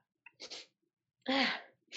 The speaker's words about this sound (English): Whoop, touch of corona. No, sneezing's not a symptom. Sneezing is not corona.